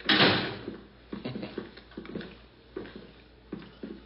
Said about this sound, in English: there's my front door.